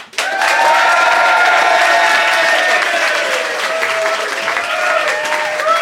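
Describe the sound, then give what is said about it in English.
An audience at the Soho Theatre bursts into sustained, loud applause to vote in a debate, a dense wash of clapping with some cheering and whistles mixed in, continuing steadily for several seconds. “If you think Romesh and Ben, and therefore Bill, is in the right, applaud now.”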